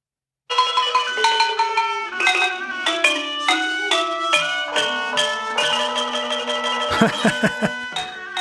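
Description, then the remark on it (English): Loud traditional Laotian music kicks in abruptly and plays without a break, a bright, tonal melody stepping quickly from note to note, dominant with no voices. “Let me see if I can get up some Laotian traditional music. Full blast for the whole 20 hours.”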